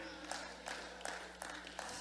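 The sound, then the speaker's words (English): Five people clap in a slow, steady rhythm, roughly five claps spaced evenly over two seconds, fairly quiet against a constant background hiss. “I got five people clapping their hands off of that.”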